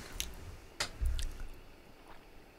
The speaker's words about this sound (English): Just have a little sip of it. Try that. This might tip me back into the caffeine.